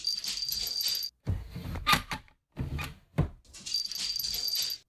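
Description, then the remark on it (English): A dog named Marshmallow, who has just fetched a bottle opener, whimpers in high, thin whines across a few seconds, broken by short gaps and soft clattering bumps, with metallic jingling mixed in and no one talking. “Let's cheers to Marshmallow, the greatest dog ever.”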